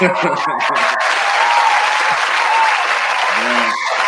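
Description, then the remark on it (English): A canned applause sound effect, triggered by pressing a button, plays: a steady, dense wash of clapping and crowd noise lasting about four seconds, with brief voice fragments at the start and end. “That deserves a real round of applause. I'm gonna hit the button anyways.”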